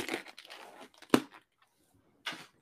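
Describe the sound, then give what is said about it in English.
A big plastic case of cotton candy is handled with a run of crinkling, rustling noise, one sharp knock partway through, then a short pause before a final brief crackle. “I have a just big plastic case of cotton candy.”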